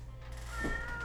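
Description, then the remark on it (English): A single meow from one of two fat cats, Sylvester and Tweety Bird, rises briefly over a steady low background hum, moderately loud, with no one talking. “Hey, are these his cats? These fat cats of his?”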